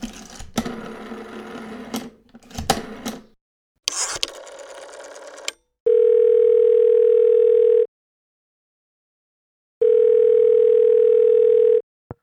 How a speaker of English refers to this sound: You can pick up the phone. Give him a call. Hold on. Let me call the troll. We're going to call the troll.